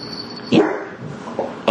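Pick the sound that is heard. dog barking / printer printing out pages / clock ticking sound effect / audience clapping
dog barking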